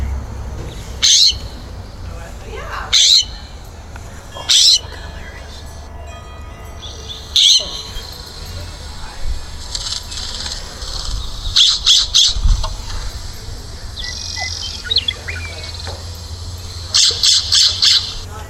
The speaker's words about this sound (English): I want to hear. You didn't play a noise for us last time. I want to hear. So that's a blue jay, right? Scrub.